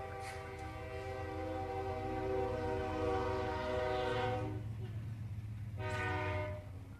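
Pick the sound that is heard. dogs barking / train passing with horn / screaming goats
train passing with horn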